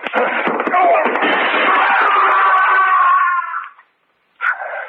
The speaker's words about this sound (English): you knocked him through the window.